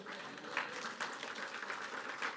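An audience breaks into steady applause for a volunteer coming up, a dense, even patter of many hands clapping at moderate loudness for a couple of seconds with no voices over it.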